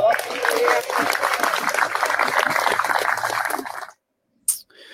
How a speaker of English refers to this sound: Well said, and obviously some good applause there.